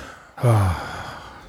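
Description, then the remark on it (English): One heavy, voiced breath out, fairly loud, like a sigh, lasting under half a second before fading into a quiet, hissy background. No one speaks. “I don't know why we're all breathing heavy.”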